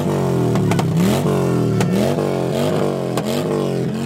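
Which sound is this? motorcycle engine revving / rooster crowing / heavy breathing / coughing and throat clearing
motorcycle engine revving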